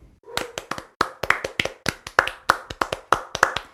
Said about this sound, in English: So let's pause real quick and give a clap for EP.